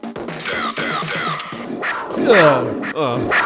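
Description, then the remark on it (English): A voice imitates a panther's growl: a few seconds of drawn-out, rasping vocal snarls with rising and falling pitch, loud, swelling to a stronger roar near the end. “I can't get hard without Panther growl.”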